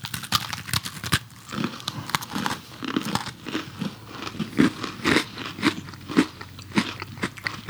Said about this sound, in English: Okay, we're going to give you a minute if you hate to hear the sound of crunching. I'm going to bite mine right into the microphone. I'm going to give everybody the full experience.